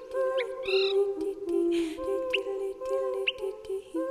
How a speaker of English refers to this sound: I've actually stood outside and looked up a lot of times on those quiet evenings. You can hear chirping birds, little call notes when they're going by communicating, and there's obviously just masses of birds going by.